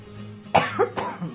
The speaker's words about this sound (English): I knew I was fighting a cough there, but hey, I leaned way away from the microphone, so maybe you didn't hear it.